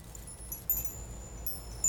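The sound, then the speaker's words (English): Soft metallic jingles and clinks of a wind chime with tangled chime cords being handled. A few brief sharp taps and thin, high ringing tones linger faintly between them. “This is a wind chime, but it looks like it's not actually damaged.”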